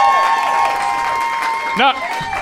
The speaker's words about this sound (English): Big round of applause.